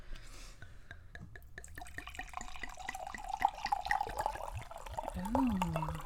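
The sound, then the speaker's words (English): Spilled wine dripping at a table, a steady run of small drops falling one after another over a faint continuous hum, with a brief wavering tone near the end. “Oh, there is a drip dropping.”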